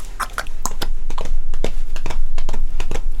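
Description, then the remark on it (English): The hooves of a horse pulling a carriage clop along at a brisk, uneven trot, a steady run of sharp hollow knocks lasting a few seconds with no voices over them. “So, I think it's only fair that I call a horse and carriage for the news and send it straight off to Baker Street.”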